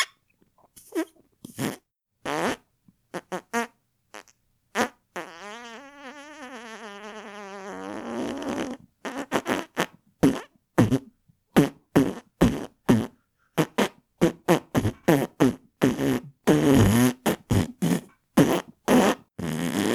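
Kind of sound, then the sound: vocal imitation, imitated fart noises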